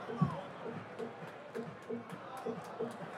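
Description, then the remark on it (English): A dense, steady roar of a large stadium crowd erupting in cheers, with rhythmic bursts like clapping or stomping punching through every half second or so, fairly soft overall. “And this crowd comes unglued.”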